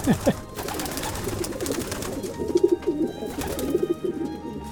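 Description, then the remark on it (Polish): Pigeons kept by their owner coo in a low, throaty rolling pattern, several birds overlapping in repeated bursts against a soft, busy background, moderately loud. “Także cieszę się w nich, także to są moje gołębie.”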